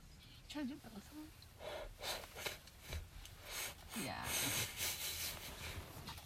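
Several breathy bursts of exhaling smoke, rushing out through the nose and mouth in uneven puffs, with soft vocal murmurs and a longer, louder exhale toward the end.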